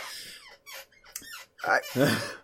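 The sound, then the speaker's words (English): A chair squeaks and creaks in several short, strained bursts, the last two longer and louder with a whiny, rising pitch. “The squeaky chair is working the night.”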